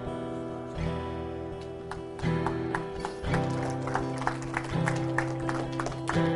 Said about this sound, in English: I think that was my first clap offering. How about that?